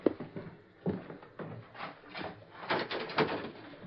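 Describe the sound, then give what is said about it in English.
A door being opened, with a series of short rattling, scraping bursts spread over a few seconds and no voices. “Open the door”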